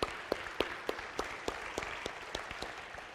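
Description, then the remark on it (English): A large group applauds steadily, with a dense wash of clapping and a few sharper claps landing in a regular rhythm throughout. No one speaks. “And speaking of my dear wife, boy, she has been my nurse in these last 5 weeks, so she's the real one that deserves the applause.”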